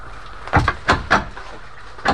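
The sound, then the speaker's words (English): A loose wooden door of a house falls off its hinges, banging and rattling in a few heavy knocks and creaks spread over about two seconds, with no voices. “The door's fallen off its hinges.”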